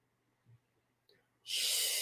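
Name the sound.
slow deliberate breathing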